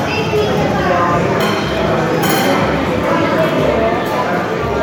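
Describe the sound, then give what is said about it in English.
Busy, continuous clinking of cutlery against plates and bowls, with light irregular taps, set against a steady murmur of voices and chewing sounds as people eat and review dishes at Nashvilleze in Pilsen. “Authentic cutlery noises and eating things.”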